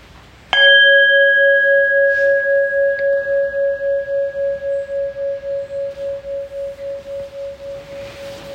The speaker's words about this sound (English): And I'll start and end with the bell.